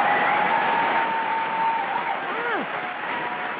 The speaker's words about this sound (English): Applause. So she gets, insert applause. Yeah, wait, yep. Yeah, she gets this applause.